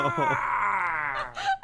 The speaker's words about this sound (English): And then you hear... That's the Howie scream, isn't it? Horrible grating crashing noise.